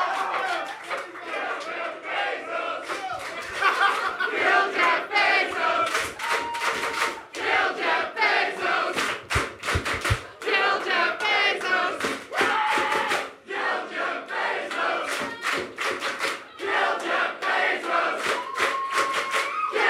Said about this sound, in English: We've done 50 shows and that was the best moment. Thank you for that. Just yelling to kill somebody feels good.